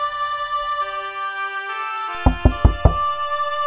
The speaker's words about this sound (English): until at last the captain knocked on the door.